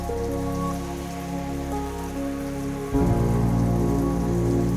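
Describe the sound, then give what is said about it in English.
Steady heavy rain pours down, then suddenly swells louder about three seconds in, becoming a fuller, denser downpour. No voices are heard. “Every movement, fingers, arms, feet are 10 times bigger than it was before as the rain gets louder and stronger.”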